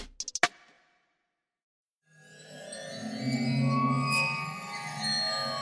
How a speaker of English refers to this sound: The water phone is a strange instrument that was created in the late 60s by an artist named Richard Waters. Since then, it's been used in countless movies and TV shows, often when something spooky or mysterious happens.